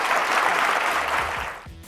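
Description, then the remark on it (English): A crowd breaks into steady applause for Ambassador Rice, a dense wash of many hands clapping together, holding strong and then tapering off near the end. No one speaks over it. “Please join me in a round of applause for Ambassador Rice.”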